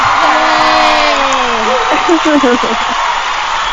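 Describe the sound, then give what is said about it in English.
A crowd cheers loudly and steadily, with a few voices whooping in rising and falling tones over the dense roar of the audience. “The crowd is going crazy for her.”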